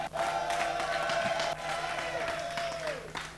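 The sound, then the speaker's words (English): An audience shouts and claps for Jesus together in a loud, dense burst of cheering and applause, with a steady held tone running underneath before the noise thins out near the end. “And give Jesus a shout and a clap.”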